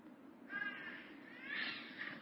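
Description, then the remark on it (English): A young child squawks twice in shrill, harsh bursts, the second one longer, heard faintly over a low background hum. “screaming right now. Not screaming, but squawking.”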